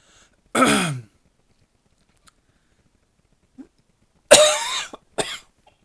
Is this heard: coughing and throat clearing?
yes